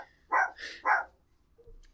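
A dog lets out a quick burst of three sharp barks in close succession, then falls silent. No one speaks.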